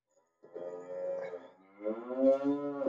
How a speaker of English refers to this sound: Cow moo next.